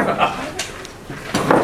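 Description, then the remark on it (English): Several chairs scrape and screech across a hard floor in quick, overlapping bursts as a church audience stands up together before a prayer, with a low murmur of voices underneath. “Get all the chair screeching out of the way in one shot, right?”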